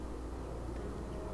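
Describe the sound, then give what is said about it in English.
An airplane drones steadily overhead, a low, even rumble that holds at a constant level throughout with no other sounds over it. “Oh, that's a plane.”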